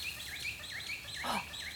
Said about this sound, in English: Can you hear those green rosellas? They're chirping away in a tall tree. They aren't found anywhere else in Australia. Only in Tasmania.